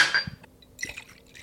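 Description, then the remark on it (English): Bourbon is poured from a bottle into a small shot glass, a quick splashy trickle lasting about a second, opening with a faint glassy ring and no talking. “Bottle of bourbon, right here. I have a shot glass.”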